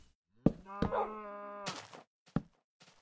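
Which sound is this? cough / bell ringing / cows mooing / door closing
cows mooing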